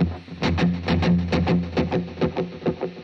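Electric guitar played through a delay effect: a quick run of bright picked notes repeating in steady echoing pulses over a sustained low tone, fairly loud, with no voices.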